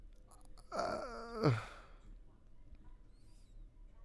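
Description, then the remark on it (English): A monkey lets out a single shrill squeal, a loud, harmonic cry that slides downward in pitch for about a second before fading into a quiet, faintly noisy background. “It's a monkey. Is it a monkey? That's a monkey.”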